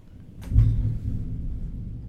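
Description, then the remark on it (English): A low rumble of thunder swells after a brief crackle near the start, then rolls on steadily at a moderate level without fading out. No one speaks. “If you can't hear that thunder, I don't know.”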